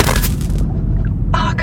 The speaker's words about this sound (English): Explosion.